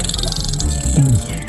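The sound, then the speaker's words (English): A rapid train of dolphin echolocation clicks, pulsing steadily and closely spaced, with a low rumbling underneath that swells briefly near the end. “This is the dolphin sonar.”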